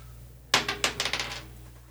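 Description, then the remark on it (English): A twenty-sided die (d20) clatters across a hard table, starting with a sharp impact and then a run of about seven quick, bright taps that shrink in loudness and settle into quiet within a second. “Roll a d20.”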